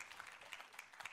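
audience applauding

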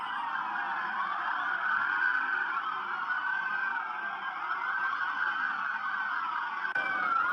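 police car sirens

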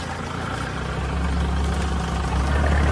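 car engine idling nearby

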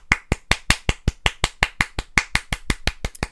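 hand clapping

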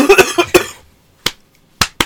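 coughing fit

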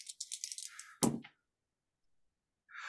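dice rolling

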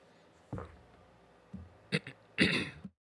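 throat clearing

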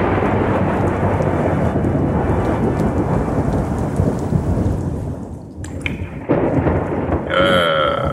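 rain and thunderstorm ambience

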